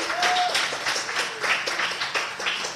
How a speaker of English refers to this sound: How about a big round of applause for the University of Vermont crew? Thank you.